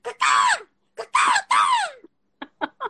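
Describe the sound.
A person vocally imitates a bird, letting out three loud, harsh, screechy calls that slide downward in pitch, followed by three short, sharp chirps.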